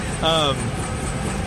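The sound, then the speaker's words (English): A loud, steady helicopter roar fills the air, with a short burst of someone speaking over the constant droning noise near the start. “So this is the segment where we talk over loud helicopter sounds.”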